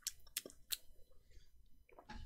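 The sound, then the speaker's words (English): Someone quietly drinking water: a few sharp, wet mouth clicks and gulping swallows in quick succession, followed by a softer rustle, with no talking. “I'm gonna drink some water, guys.”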